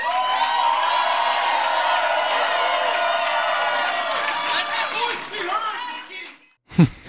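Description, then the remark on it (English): A large crowd at a Nikki Haley rally in New Hampshire roars and cheers continuously for several seconds, dense and loud, then fades; after a brief gap a single man's voice shouts out sharply. “I love the yelling guy.”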